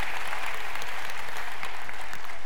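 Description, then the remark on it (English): An audience claps together in a dense, steady patter of many hands, bright and moderately loud, with no voices standing out above the applause. “You feel like you want to clap.”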